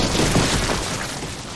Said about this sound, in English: A final wave of boulders crashed to the ground, sealing the door and trapping BeeBop and Gigi in the cavern.